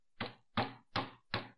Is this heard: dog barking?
no